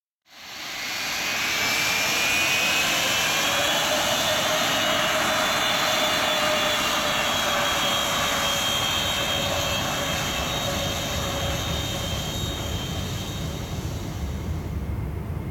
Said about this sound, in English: The plane despega, takes off, and Minette can't wait to finally see Yesenia.